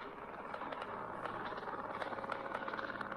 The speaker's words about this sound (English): But you can hear the helicopters. You can hear them.